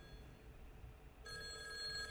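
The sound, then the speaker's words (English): A telephone bell starts ringing partway through as four old funk musicians sitting around a stool try to call Bette Davis, a steady trilling ring that continues to the end over a low background rumble, with no one speaking. “Please answer the phone.”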